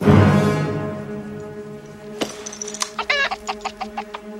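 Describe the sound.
A chicken clucks: a loud opening squawk, then a run of short, choppy clucks in an uneven rhythm, with no voices.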